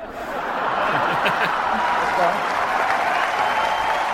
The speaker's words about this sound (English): Obama using that as part of his killer stand-up routine at the White House Correspondents' Dinner. You can hear all the applause there.